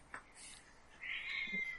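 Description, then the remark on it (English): A small female cat, the smallest of several, meows as she practises her voice, a thin high-pitched cry that rises and holds for about a second, with a faint soft earlier call before it. “but the smallest cat has discovered her voice and is practising a lot.”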